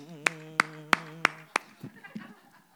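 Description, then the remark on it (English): Five sharp, evenly spaced hand claps in a fast halftime beat ring out over a sustained sung note, then the clapping stops and a voice continues talking. “You did that halftime clap like.”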